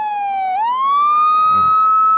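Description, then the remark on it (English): A loud siren sound effect plays alone, its tone dipping briefly then sliding up into a steady, sustained wail, with a faint low thud near the end. “Yeah, old bit siren, not prepared, right?”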